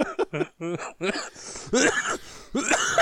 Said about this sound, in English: Every time I laugh, it's going to make me cough. Oh, jeez.